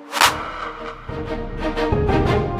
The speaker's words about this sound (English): We high five for sure, right? Oh, yeah. Change, insert a high five noise.